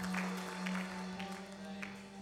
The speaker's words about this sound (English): Why don't we give another big round of applause for that lady? That is awesome news.